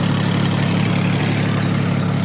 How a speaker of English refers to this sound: And then the wonderful touch with the helicopter goes up, and one of the jokes being during the episode, BJ couldn't say goodbye.